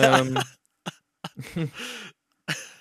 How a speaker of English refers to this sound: Sorry. That was a very audible hiccup burp. Yeah, sorry.